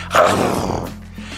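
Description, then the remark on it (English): JB Smoove lets out a short, loud growling roar in imitation of a tiger, rising sharply and trailing off over about a second, with a low hum underneath. “JB Smoove, the tiger. Let's hear that roar one more time.”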